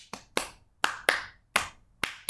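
Someone claps out a rhythm with hands alone: about seven sharp, crisp claps in an uneven pattern, mostly quick pairs separated by short pauses, with one single clap between them. No one speaks.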